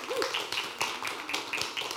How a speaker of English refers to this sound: keep going with the claps